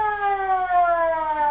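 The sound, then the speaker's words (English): A fire siren sound effect made by a sound effects man wails on its own, a loud, steady tone rich in harmonics that slowly slides downward in pitch across the whole clip, with no voices. “He's a three-alarm fire and a fire chief, too.”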